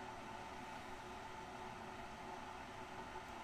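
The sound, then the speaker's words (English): A kettle heating water for an AeroPress coffee gives off a steady, even hiss and low rumble that holds at a constant level throughout, with no talking. A small thermometer in the kettle checks the temperature as the water comes up to 84. “So I just use a little thermometer in the kettle just to check that I have the right temperature.”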